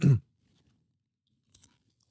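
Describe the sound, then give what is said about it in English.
A loud crunch as a spicy snack is bitten into, followed by quiet chewing and two small, quick crunches a moment later, with no talking. “The crunch is like. It's like a journey of flavors in your mouth.”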